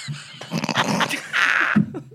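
A German Shepherd dog growls and snarls, a rough, continuous rumble that swells into a sustained harsh growl before breaking off into a short whine, with no one speaking.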